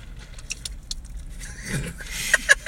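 A big, exaggerated sip of a drink, a drawn-out slurping noise followed by a couple of sharp clinks, over a steady low engine rumble inside a Kia Optima, with no talking.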